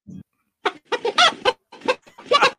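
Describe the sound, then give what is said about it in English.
A chicken clucks in a quick series of sharp, choppy bursts, loud, with brief gaps between the calls and no one talking. “No, it definitely wasn't what I wanted. A chicken.”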